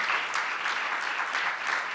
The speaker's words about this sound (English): Come on, let's give God a round of applause.